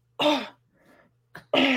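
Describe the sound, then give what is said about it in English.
Two harsh, loud coughs separated by a brief pause with a short rasp just before the second, like someone clearing a scratchy throat. “Cough.”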